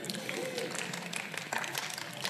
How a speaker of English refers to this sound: Yeah, you're all giving a round of applause.